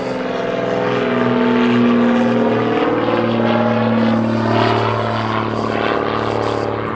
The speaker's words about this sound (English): Oh, you can just hear the aeroplanes going overhead. Apologise for that. I'll just wait a moment.